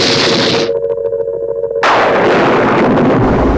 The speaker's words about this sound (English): But now, and again, please wait to hear for a certain thunderclap.